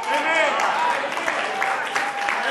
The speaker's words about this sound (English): Oh, I didn't get many hand claps.